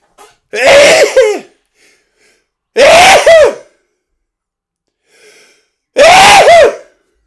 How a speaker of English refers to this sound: guess what? I'm going to sneeze now.